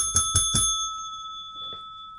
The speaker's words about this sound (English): Where's that bell? Where is the bell? Oh, there it is.